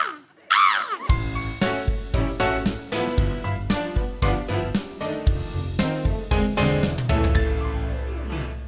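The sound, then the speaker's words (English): A voice briefly mimics bird calls with a couple of swooping, squawky cries for about a second, then loud rhythmic music with steady beats takes over for the rest. “I'll bring the birds, won't I? It's not a bad impression.”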